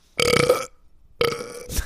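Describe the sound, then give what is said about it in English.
Two loud belches, the first long and rumbling, then a brief pause before a second croaking burp that ends with a short grunt, with no talking. “And he does not appreciate you belching in his face while you're tattooing.”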